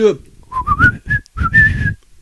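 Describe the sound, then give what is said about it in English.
Someone whistles a short signal: a few quick rising chirps, then one longer held note, with dull thumps sounding underneath. “There were two bangs and a whistle.”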